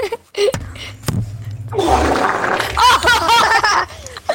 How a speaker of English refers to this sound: I'm about to fart my mic. Hold on.